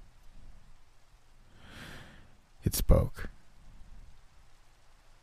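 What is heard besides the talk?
rain and thunder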